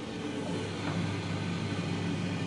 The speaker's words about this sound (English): That's my clothes dryer, Aaron. It's spinning round and round and round, and it's hot, and it's sucking all of the liquid out of the clothes.